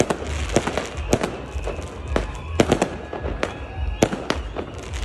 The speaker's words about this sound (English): Ursäkta, får man skjuta raketer nu? Nej, inte. Can you shoot off fireworks? No.